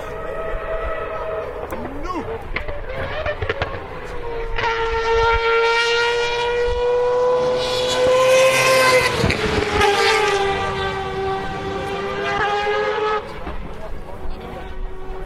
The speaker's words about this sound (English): That's what the sound of a rotary engine at probably 7/10 sounds like going through the Porsche curves at, what time is it now? 10 to 1 Sunday afternoon.